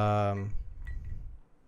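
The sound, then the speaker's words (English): A voice fades out, then two light clinks of drinking glasses tapped together in a toast ring out close together, over a low background murmur. “Cheers. Cheers.”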